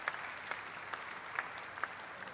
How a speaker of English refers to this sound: Now, that's where you need to applaud right there.